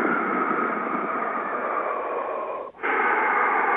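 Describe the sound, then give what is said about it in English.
Heavy, raspy Darth Vader-style breathing imitated by a voice: one long, hissing breath that breaks off in a brief pause, then a second loud, rasping breath. “Okay, sir, you sound like Darth Vader.”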